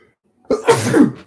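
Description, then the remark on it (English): A single loud sneeze bursts out after a moment of silence, with a sharp intake followed by a forceful, breathy explosion that fades quickly. “Bless you.”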